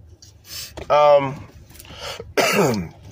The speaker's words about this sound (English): Excuse me, I got to blow my nose.